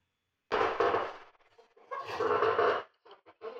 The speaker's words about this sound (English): As I adjust myself in my squeaky chair.